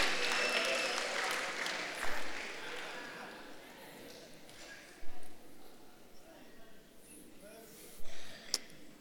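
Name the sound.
audience clapping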